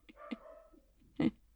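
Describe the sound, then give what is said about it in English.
A dog barks in the background: a couple of short yips early on, then one louder, sharper bark about a second later, with quiet gaps between. “So, I'll give that dog a moment.”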